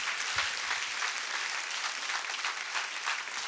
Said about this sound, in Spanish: Yo creo que vale la pena aplaudir a nuestro Dios.